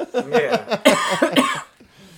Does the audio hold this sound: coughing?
yes